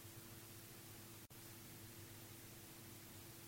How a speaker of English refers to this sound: Now they're hearing static.